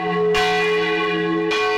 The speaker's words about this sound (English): How do you feel when the bells in town ring?